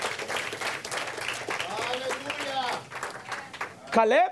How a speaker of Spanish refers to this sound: ¿Le puede dar un aplauso al Señor Jesucristo? Can you give him a round of applause to the Lord Jesus Christ?